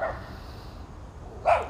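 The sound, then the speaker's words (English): A small brown puppy in a purple harness yaps sharply at the speaker, once at the start and again near the end, two high-pitched barks separated by a quiet pause with faint background noise. “I can see three pups, one of which has decided to turn around, look directly at me and start barking hysterically, as if there is something very specific I'm doing that is very upsetting to it.”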